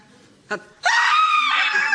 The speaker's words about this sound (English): Okay. Scream! Sorry, that's a stage direction. I should have done brackets.